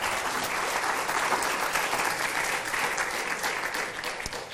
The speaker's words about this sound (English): You write, yeah, that's worthy of applause right there.